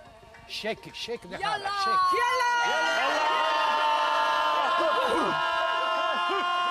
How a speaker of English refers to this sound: There's a lot of reaching up to the sky, shouting and grunting, and just expelling noise and air, I suppose.